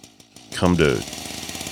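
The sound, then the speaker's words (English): A solar-powered city e-bike of the kind food delivery riders use putters in quick pulses, then revs up sharply with a loud rising whine like a dirt bike, settling into a steady buzzing idle. “It was something resembling a dirt bike.”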